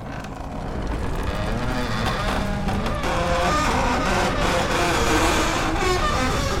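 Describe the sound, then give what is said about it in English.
A giant door creaks open slowly in one long, loud, grinding groan that wavers in pitch and holds steady for several seconds, rough and dense, with no voices. “It was the creaking voice of a giant door, slowly yawning wide.”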